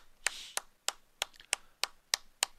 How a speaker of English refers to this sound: Can we get a round of applause for my favorite quarterback all of a sudden, Dak Prescott?